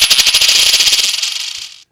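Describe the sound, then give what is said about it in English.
A loud cascade of coins being thrown into a jar, a rapid metallic jingle of many small impacts that thins out and stops after a couple of seconds, with no voices. “Here come the coins.”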